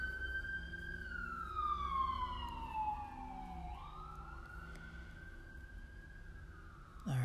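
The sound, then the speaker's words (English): An emergency vehicle siren wails outside, its pitch sliding down slowly then sweeping back up, with low traffic rumble underneath, passing by along the street. “I've mentioned before, you know, there's a lot of sirens lately.”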